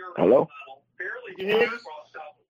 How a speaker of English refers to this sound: Yeah, you got a little echo.